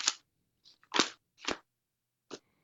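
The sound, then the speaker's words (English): Paper notes being rustled and shuffled as someone looks through their handwritten notes, giving four or five short, crisp crinkling bursts at an uneven pace with brief silences in between; fairly quiet, with no talking. “Are you eating paper over there?”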